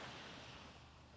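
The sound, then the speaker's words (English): A soft, steady wash of surf, ocean waves coming and going and breaking against the shore, forming a quiet, continuous hiss with no voices present. “For me, I obviously hear the sound of the waves coming and going behind me, breaking against the shore.”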